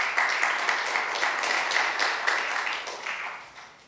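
A round of applause from a church audience at Villas Grace Church: many hands clapping in a dense, steady patter that holds for about three seconds, then gradually tapers off.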